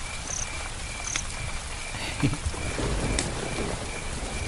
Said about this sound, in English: And after a couple of minutes of the thunder getting closer and maybe a little bit more regular, there was the very smallest drops that you could hear kind of dropping on leaves and things. And now we've got to this. Rain's quite heavy.